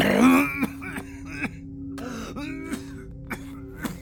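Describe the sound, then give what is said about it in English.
A man's low, rough vocal growl opens loudly, followed by a string of short, sharp coughs and throat-clearing bursts spaced irregularly over a few seconds. “growled and coughed, then started over.”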